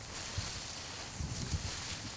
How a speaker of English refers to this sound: I'm sitting in a cornfield in Sussex. I've come for a trip down to the seaside. The corn in front of me. It's gently blowing. It's quite breezy.